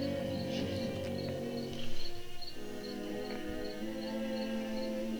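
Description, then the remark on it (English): Crickets chirp in a steady, evenly spaced rhythm, soft, layered over a continuous low droning hum with no talking. “I can hear the crickets clear as day.”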